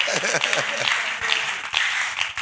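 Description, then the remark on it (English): A church audience claps during a sermon, a dense, steady burst of applause, with a voice briefly speaking over the start before the clapping carries on alone at a fairly even volume. “You're not clapping for that.”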